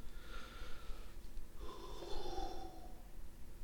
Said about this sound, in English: A little bit of a yawn, because we yawn occasionally.